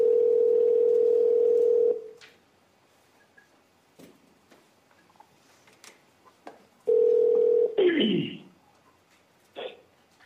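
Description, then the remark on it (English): A loud, steady telephone dial tone hums for two seconds on a wiretapped phone call recording played at a trial, then cuts to near silence with faint clicks of dialing; the tone returns briefly before a descending electronic warble and one short beep. “multiple text messages and phone calls were played after investigators had wiretapped Charlie's phones”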